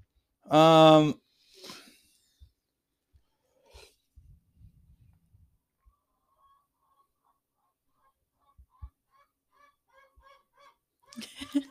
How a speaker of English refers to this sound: I hope they can hear that. What chicken is that? I don't know. Can you see which one it is? I think they're over there.